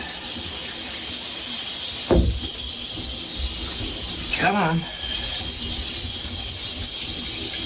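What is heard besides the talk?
shower running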